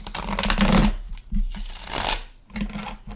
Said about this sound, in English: And I'm going to give it 3 shuffles, shuffle it nicely. 1 more.